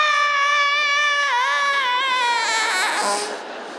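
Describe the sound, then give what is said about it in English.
A voice imitates the long, drawn-out dying scream of people on a nosediving plane: one sustained high-pitched wail that wavers, then strains and frays into a rougher, breaking cry before trailing off. “I didn't really pace out my dying scream.”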